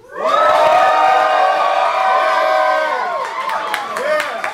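A live audience at the Blockhouse, during a local live remote broadcast on WFHB, erupts into loud, sustained cheering for a band, with high-pitched whoops and screams, holding strong for about three seconds before breaking into scattered shouts and rising yells.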